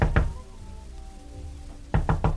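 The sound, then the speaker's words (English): Two sharp knocks on a door, a pause with a low sustained tone, then four more quick knocks in a firm, even rhythm. No one speaks. “Go on, answer it. Who is it?”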